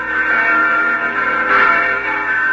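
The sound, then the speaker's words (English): Church bells of a whitewashed church with a tall, red-topped steeple ring on Christmas Eve in a small village in the Austrian Alps in 1818, in a dense, continuous wash of overlapping tones, fairly loud and steady, swelling briefly midway, with no voices present. “There are the church bells.”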